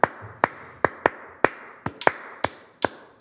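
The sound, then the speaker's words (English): A chopstick taps a cup to play a bell part in a rhythm: about a dozen sharp, bright clinks with a short ringing tone, a few strikes near the end doubled. No one speaks. “You can play on your cup. You have a chopstick or a pencil.”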